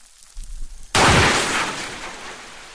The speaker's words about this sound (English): but then you hear this humongous explosion, and then you hear the echo of the sound bouncing between two islands